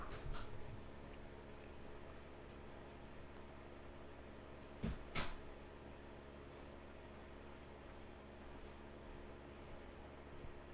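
A door opens and shuts as someone comes through it, with a brief pair of muffled clunks midway through, set against a steady, low mechanical hum. No one speaks.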